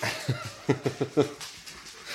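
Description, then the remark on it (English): Several quick, sharp barks from a household pack of dogs, two standard poodles and three chihuahuas, in a short burst, moderately loud, with a faint hiss of background noise behind them. “And you know, and I've got a, and the dogs just went off.”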